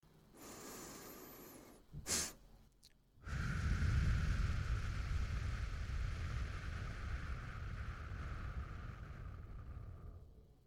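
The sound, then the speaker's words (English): Someone practising cyclic sighing breathes in through the nose, adds a quick second sniff to top it off, then lets out a long, slow, breathy exhale through the mouth lasting several seconds. No talking. “the idea is to take a nice, easy breath in through your nose, and near the end of your breath, take in another short inhale to top things off.”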